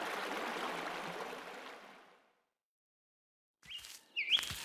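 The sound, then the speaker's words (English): Steady rushing creek water, settling down after high water, fills the first two seconds, then fades to silence before a few sharp, bright bird chirps ring out toward the end. “Water in the creek looks like it's settling down.”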